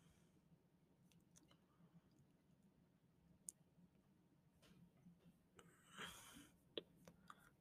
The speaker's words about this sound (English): Can I shout anyone out? I'm like clicking on profiles.